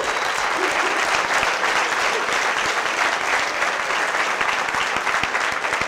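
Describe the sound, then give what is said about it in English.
A large audience claps steadily and loudly for a guest on stage who flew 16 hours from Norway, a dense wash of hand claps filling the whole stretch with no break or fade. “Round of applause for that.”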